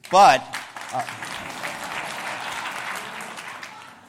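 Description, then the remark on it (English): An audience in Bethlehem, Pennsylvania breaks into steady, dense applause that carries on for several seconds at an even level, opened by a brief loud vocal whoop from the crowd. “Were you told to clap? You were told to clap.”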